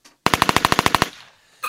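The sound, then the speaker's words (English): Firecrackers crack off in a fast, even string of about a dozen loud pops, then trail away into a fading echo, followed by a brief noise at the very end. “Firecrackers.”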